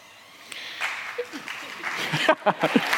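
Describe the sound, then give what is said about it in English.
An audience breaks into applause, scattered claps swelling into a steady patter of many hands, with a few sharper individual claps standing out toward the end. “I have these natural pauses, and some of you interpret them as me wanting applause, and I actually really do appreciate it, so thank you.”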